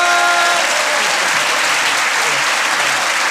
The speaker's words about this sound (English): Ladies and gentlemen, give a massive round of applause. Ahir Shah!